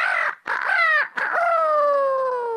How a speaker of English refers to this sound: And the next day the rooster crowed.